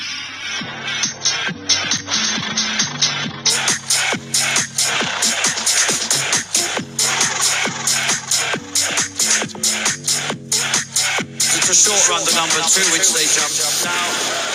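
An energetic dance track made for the Cheltenham Festival, with a steady, pounding four-on-the-floor beat, bright synths and chopped, excitable horse-racing commentary voice samples layered over the music, loud throughout.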